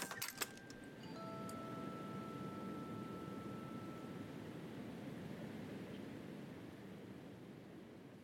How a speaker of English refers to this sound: In fact, even as you turn the handle, the door opens with a hiss.